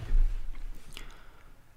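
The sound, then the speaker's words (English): Soft, crinkly paper rustling with a few scratchy bursts as the sheets of a weekly agenda are brought over and handled, fairly quiet throughout with no talking. “Pardon the paper sound here as I bring over my weekly agenda.”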